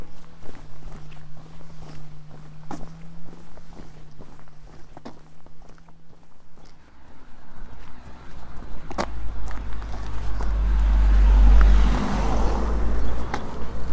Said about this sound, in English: Just walking through Forncombe. Past a block printer's workshop.